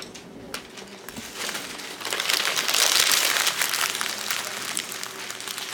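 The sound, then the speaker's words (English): Many sheets of paper being crumpled at once by students in a class, each crumpling a written response into a paper ball: a dense rustling crinkle that swells and stays busy for several seconds, with no voices. “when the timer dings, I want you to take your response, make sure your name is on the top of it, and then crumble it up into a paper ball that's gonna sit on your desk.”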